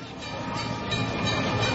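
A toy train set runs with a steady, continuous mechanical rumble and whir, even in loudness throughout, with no voices.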